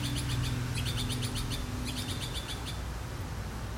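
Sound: birds chirping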